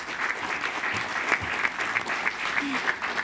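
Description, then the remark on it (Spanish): Steady applause from a group of people, dense continuous clapping at an even loudness for a few seconds, with a few sharper claps standing out. “Un aplauso.”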